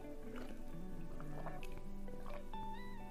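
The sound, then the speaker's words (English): Gulping as someone drinks water, several wet swallows in quick succession with soft liquid sloshing, fairly quiet, no talking. “Ah, that water is so good.”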